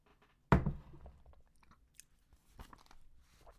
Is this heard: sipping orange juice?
yes